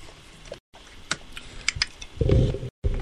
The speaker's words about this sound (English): Sorry. Yeah. Cat's trying to knock the microphone off.